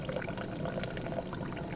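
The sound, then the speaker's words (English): A cup of cold water pours steadily into a pot of simmered coffee and egg for a couple of seconds, a continuous splashing gurgle with no one talking. “Pour in a cup of cold water and then let it sit for 10 minutes.”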